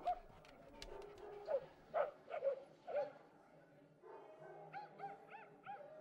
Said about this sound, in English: look at our dogs. They're having a whole conversation right now. They're still friends.